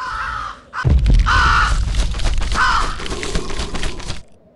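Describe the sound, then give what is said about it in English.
A raven in a video game caws loudly and harshly, about three rasping calls in quick succession over a rough, noisy rumble, with no one speaking. “You know, he took away a perfectly usable death by that raven.”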